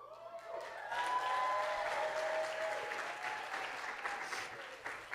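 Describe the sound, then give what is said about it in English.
An audience at a Mother's Day service bursts into sustained, dense applause that swells quickly and holds steady for several seconds, with a few faint whoops and cheers rising through the clapping, after the speaker announces she is pregnant. “And listen, y'all are clapping, but your girl's about to be 52.”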